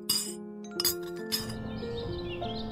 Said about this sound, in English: They sat in silence as they ate breakfast. All they could hear were the sounds of the metal spoons clinking the bowls and the loud birds outside.